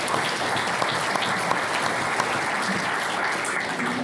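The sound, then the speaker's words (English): An audience applauds in a steady, dense round of clapping that holds at an even, fairly loud level for about four seconds without fading, and no one speaks over it. “Round of applause.”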